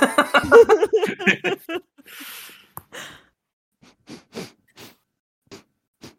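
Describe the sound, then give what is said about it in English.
A voice talks briefly, then a loud, hissy sniff sounds right up against the microphone as someone sniffs the microphone itself, followed by a few fainter, short breathy noises with pauses between them. “Sorry, I was sniffing my microphone there.”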